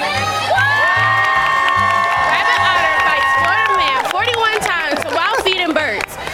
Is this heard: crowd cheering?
yes